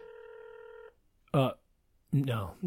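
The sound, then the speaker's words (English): A steady telephone ringback tone from an outgoing phone call plays clearly for about a second, then cuts off, followed by short bursts of people talking. “It's still ringing.”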